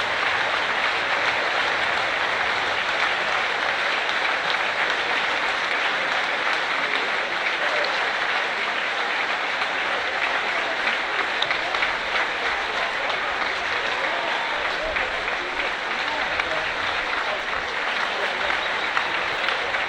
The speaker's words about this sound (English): The fans now applauding for Eleanor. I'll keep quiet as long as there's not much going on, because this is a genuine moment of community.